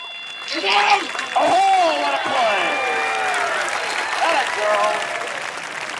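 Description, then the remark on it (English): Steady crowd noise at a baseball game swells back once the play is called, a broad wash of applause and overlapping voices with a few higher cheers and calls rising above it. “In between plays, the crowd sounds about the same as any baseball game.”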